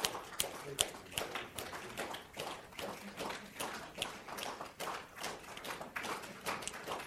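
Hands clap 50 times over and over in a quick, slightly uneven rhythm, each sharp, crisp smack coming about three or four times a second with no voices.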